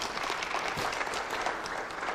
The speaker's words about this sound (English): I think you ought to clap your hands.